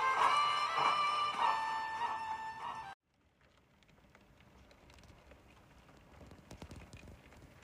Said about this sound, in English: That was the Icelandic rain falling. It's been falling all day long.